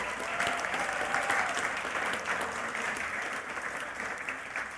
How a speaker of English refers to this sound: I want to thank everyone at Salt Lake City for hosting us here. How about a round of applause for the Salt Lake City people?